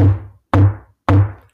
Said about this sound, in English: Come closer. Hear the knock on the door.